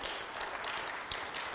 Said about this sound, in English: Go ahead and clap